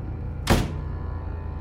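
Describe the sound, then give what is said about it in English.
A door shuts with a single dull, heavy thunk that fades quickly, leaving a steady low hum in the background. No one speaks. “Doors open and close.”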